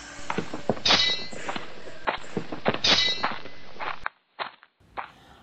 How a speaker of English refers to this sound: While handing it over, it falls to the ground with a clanging noise and they all hear footsteps outside.